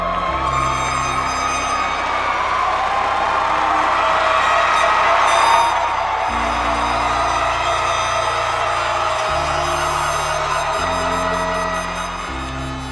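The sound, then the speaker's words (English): Loud, sustained applause and cheering from a large crowd at a Metro Tech class of 2022 graduation ceremony, as the parents of a student killed in a car accident accept his diploma; a dense roar lasting throughout, with steady droning horn-like tones underneath and no talking. “And when the student's parents accepted his diploma for him, they were met with a deafening applause.”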